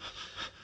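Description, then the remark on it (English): Breathy panting from a person: a quick pair of heavy, excited breaths swelling and fading in under a second, with no speech. “Heavy breathing ensues.”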